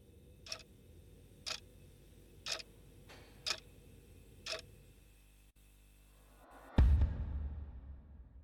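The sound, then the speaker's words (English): A clock in the Dawson County Jail ticks slowly and steadily, five crisp ticks about a second apart, followed by a pause and then a louder, heavier thud that fades out with a low rumble. “Look at the clock. It ain't moved.”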